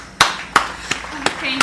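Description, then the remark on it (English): Five sharp, crisp hand claps in a slow, steady rhythm, with faint background murmur between them. “If I weren't holding my phone right now, I'd clap.”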